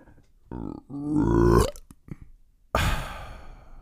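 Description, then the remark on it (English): A loud belch stretches out with a rough, rising voiced tone, and a short breathy, noisy gust follows a moment later. No one is speaking. “But, you know, you're going to be belching a lot when you get filled up with this episode of Death Metal Deuce.”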